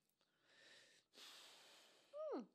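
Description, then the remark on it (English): Two long, heavy breaths, a hissing inhale then a harder exhale, ending in a short wheezy, voiced groan that slides downward. “That was heavy breathing.”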